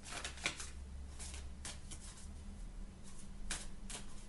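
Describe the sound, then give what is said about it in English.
A deck of cards is shuffled to pick an affirmation for the week: quiet, papery riffling bursts come in irregular spurts with short pauses between, over a low steady hum. No one speaks. “So I'm going to shuffle the cards and then I'll get straight to it.”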